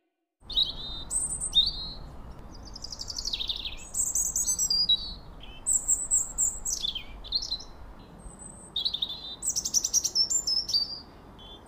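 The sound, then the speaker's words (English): Birds chirp and twitter continuously along an estuary trail in bright, high-pitched bursts and quick trills, several calls overlapping over a steady low wash of background noise. No one speaks. “Phoenix and Ing walk their favorite trail at the estuary. Egrets walk through mud and shallow water, pelicans dip and swoop.”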